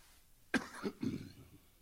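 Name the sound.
coughing fit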